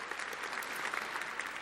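Steady audience applause for Susan, a dense wash of many hands clapping at once, even in loudness throughout, with no voices standing out.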